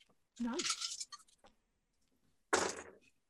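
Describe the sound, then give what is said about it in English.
Ten dice rattle and clatter as they are rolled in two short bursts, the first longer and scattered, the second a quick tumble, with a faint voice murmuring in between. “Right, so I'm rolling 10 dice.”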